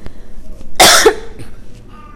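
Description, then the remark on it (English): A single sharp cough from a person with a cough drop in their mouth bursts out in a quiet moment, brief and forceful, followed by a faint throaty trailing sound and then near silence. “I have a cough drop in my mouth, and there's tea right there.”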